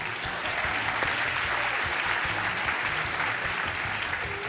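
An audience claps steadily for a magic trick in which a ball is made to disappear, with dense, continuous applause at an even loudness for several seconds and no voices standing out.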